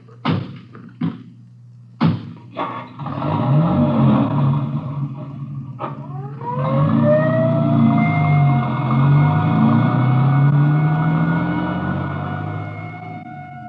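A few door thumps and an idling engine, then an ambulance siren winds up and wails steadily and loudly over the engine's low rumble, with no one talking.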